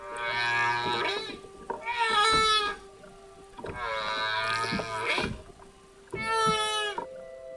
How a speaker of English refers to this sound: a sound file he had borrowed off some students at Hawaii University. That they'd made of humpbacks lunge feeding and the subsequent contact calls